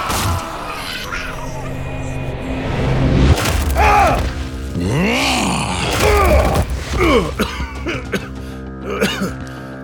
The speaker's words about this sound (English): you're coughing up some kind of black gunk, my friend. That can't be good.